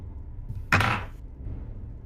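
A single sharp click of a door latch releasing, followed by a brief rustling swing as the door comes open very slightly, then quiet room tone again.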